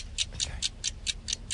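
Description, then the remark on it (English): A clock ticks steadily, about one sharp tick every quarter second, bright and crisp over a low background hum, like a countdown timer running. “So hopefully, let's start the clock starts now.”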